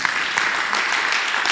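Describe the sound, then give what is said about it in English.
A crowd applauds for Jesus after a Bible reading, dense overlapping claps forming a continuous wash of sound that holds fairly loud and even throughout, with no voices standing out. “You should clap for Jesus.”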